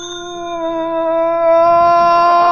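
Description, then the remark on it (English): A doorbell at Gargoyle Castle rings as one long, steady buzzing tone, held without a break for a few seconds and growing slightly louder near the end, with no one talking over it. “Okay, ring the bell”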